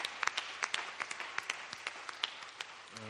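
An audience breaks into steady applause, a dense patter of many hands clapping with sharp individual claps standing out, fairly soft overall, before a voice begins at the very end.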